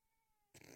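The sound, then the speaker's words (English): A quiet moment with a faint steady hum, then a single loud cat meow bursts in abruptly from a cat that has just come back, filling the rest of the short clip. “Hello, kitty. Kitty's back.”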